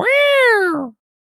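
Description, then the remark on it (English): A person imitates a siren with one loud vocal wail that rises slightly and then slides down over about a second, sounding much like a cat's meow. “So just like that sounded like, a cat in a bag. Well. I'm sorry. That was a terrible siren, and I apologize for that.”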